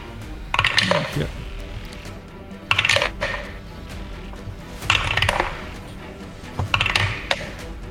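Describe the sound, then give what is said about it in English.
Four separate bursts of dice clattering and tumbling across a hard tabletop as players roll for initiative, each a short rattle spaced a second or two apart, with a low murmur of voices underneath. “dice rolling”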